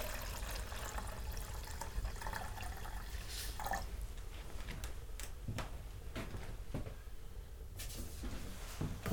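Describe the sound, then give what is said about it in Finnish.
Melted snow water is poured from a large pot into a camp stove for making dinner, with trickling, a few splashes and scattered drips over a steady low outdoor rumble. No one speaks. “Ja kun jonkun aikaa oli mennyt, niin kattilassa oli sen verran vettä, että sain siitä retkikeittimeen päivällistä varten vettä.”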